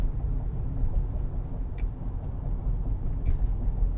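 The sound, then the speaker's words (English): A motorcycle engine rumbles in a low, steady drone that holds at an even loudness for the whole stretch, with a couple of faint brief ticks on top and no talking. “And whenever I work on something, this motorcycle is being obnoxious.”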